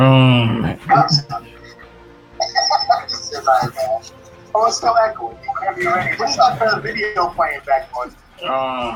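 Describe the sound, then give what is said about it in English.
Voices play back from a video with an echoing, slightly hollow quality, talking in steady bursts with short pauses, moderately loud throughout. “Oh, it's still echoing.”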